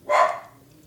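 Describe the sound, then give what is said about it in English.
A single sharp dog bark, clear, followed by a brief fading tail and quiet background. “Maybe you hear a dog barking.”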